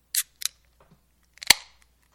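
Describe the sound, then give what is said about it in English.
A couple of quick metallic clicks, then a sharp crack of a beer can tab popping open, Nuclear Nugget Imperial Honey IPA by Licking Hole Creek in Virginia, with a short fizzy hiss trailing off, with no one talking. “why don't you read what the website says while I open up these, which are another beers and cans.”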